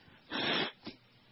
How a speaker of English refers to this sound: Bad form to blow your nose on the ear, but I can't help it. Hey, who cares? It's all these allergies.